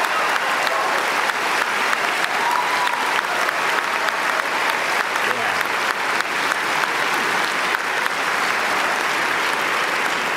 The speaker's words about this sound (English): Congratulations. Yes. Give yourself a round of applause, please. Please.